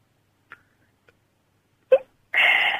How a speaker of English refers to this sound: Are you drinking? No. I just heard you drink and then hiccup. Yeah, I'm drinking. It's only water.